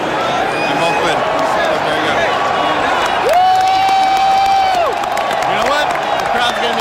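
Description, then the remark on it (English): A crowd cheers and whoops steadily throughout, a dense wash of voices with a single loud, sustained whistle-like cry rising above it midway. “Crowd's going. The crowd's liking it.”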